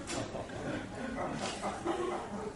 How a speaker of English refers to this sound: Is that a dog? I thought it was a dog. The dog was like shocked suddenly. What happened to the dog?